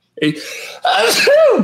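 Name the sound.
sneeze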